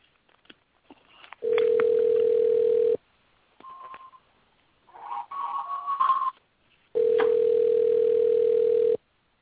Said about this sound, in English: That was my other phone ringing. Sorry about that.